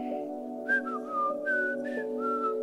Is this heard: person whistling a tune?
yes